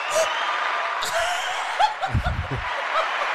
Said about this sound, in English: Okay, but there are 8 buttons here, and I just happened to pick the applause one on a perfect applause cue.